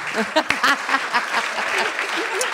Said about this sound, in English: Guys, can we get a big round of applause for Claire Hooper, Dilruk Jayasinha, Tom Gleeson, Fiona O'Loughlin.